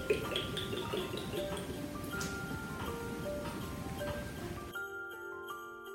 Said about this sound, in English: She pours her oil on top.